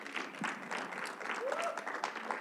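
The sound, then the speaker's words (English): A church audience claps steadily in a dense, continuous burst of applause, with a few faint voices calling out over the clapping. “So if we got to stay at 50 for a year, come on, clap that up.”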